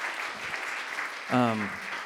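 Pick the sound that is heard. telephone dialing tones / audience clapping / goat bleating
audience clapping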